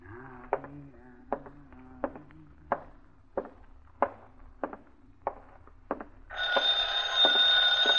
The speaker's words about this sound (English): Somebody get the phone? I'll get it, Mom. I'll get it.